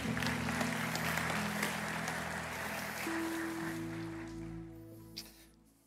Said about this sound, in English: Was that clap because I've survived 35 years? I've been here for a minute, I guess.